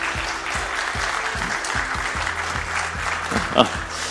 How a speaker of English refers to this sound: but you should be aware that I have a live audience in front of me, many eyes watching me, so I can only prove this by demanding a small round of applause from our live audience here.